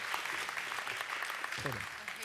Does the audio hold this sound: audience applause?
yes